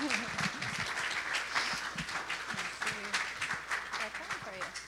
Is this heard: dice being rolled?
no